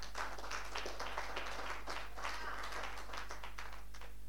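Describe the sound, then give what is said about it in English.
An audience claps steadily for several seconds, a dense patter of many hands with brief louder bursts, continuous and fairly even in volume with no speech over it. “Because that person, yeah, it's a good thing to clap.”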